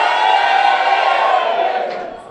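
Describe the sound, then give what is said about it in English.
An audience giving the Lord a shout, shouting and cheering together in a loud, sustained roar of many voices that holds steady for about two seconds before starting to fade. “Give the Lord a shout.”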